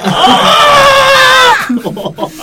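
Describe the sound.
A voice imitates a chicken being slaughtered: one loud, strained, high-pitched shriek held for about a second and a half with a slight waver, then cutting off into brief mumbling.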